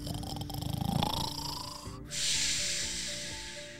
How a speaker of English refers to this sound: Have you ever heard a dinosaur snore? They are pretty loud snorers.